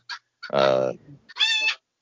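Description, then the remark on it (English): A rooster squawks loudly in agitated bursts after a territorial clash with a cat: a brief chirp, a long harsh squawk, then another shrill cry, with no one talking. “There was an overlap of territories between the rooster and the cat.”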